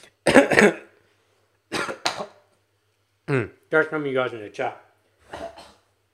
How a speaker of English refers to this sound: I'm coughing up a lot of phlegm today because there's a lot of hay fever going around.